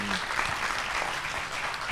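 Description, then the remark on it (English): An audience applauds to show worry that their jobs and industries will be affected by a possible 25% Mexican tariff, many hands clapping in a dense, steady patter that holds at an even, moderate level for about two seconds, with no voices standing out. “Give it a cheer, you know, applaud if you're worried about that.”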